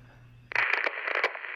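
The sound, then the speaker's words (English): A low electrical hum cuts abruptly into loud, hissing static from a concealed speaker, crackling with sharp irregular pops for about a second. No voice is heard. “A crackling voice spoke from a concealed speaker.”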